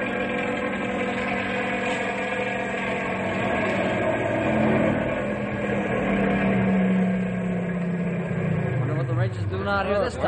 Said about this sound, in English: What kind of a motor is that? Sounds like a small plane flying low. Well, it is a small plane. The pilot must be crazy. Why, he's flying down the highway. I know what it is. That's a Ranger snow car.